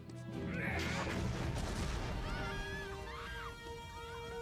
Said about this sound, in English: Did you know a sword hitting a car is gonna cause a giant explosion?